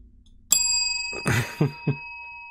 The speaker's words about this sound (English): Synchro bell.